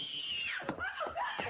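An actress in a film gives a shrill, sustained scream that rises and falls in pitch, loud, with a harsh strained edge and a few breaks as it wavers.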